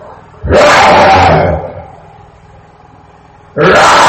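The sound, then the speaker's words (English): A person imitates a lion's roar: a loud, rough, drawn-out growl lasting about a second, then a pause and the start of a second roar. “And while they were riding along the park, he said, they told them that the lion every 5 hours will come out and roar.”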